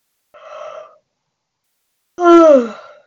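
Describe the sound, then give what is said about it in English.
A big yawn: a breathy intake of air, a short pause, then a loud, drawn-out voiced exhale that slides downward in pitch and fades. “Big yawn on that one.”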